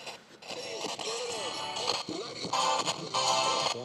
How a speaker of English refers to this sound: Whoa! So we got some static. You probably haven't heard static in a long time. That's what static sounds like.